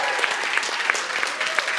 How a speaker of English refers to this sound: Can somebody give our pastor a round of applause?